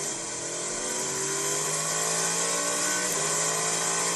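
A loud race car engine, Jimmy Johnson's car on an outlap at Daytona, roars steadily at high revs, its pitch holding and gently shifting as it drives and moves on the banking, with a slight dip near the end. No one speaks.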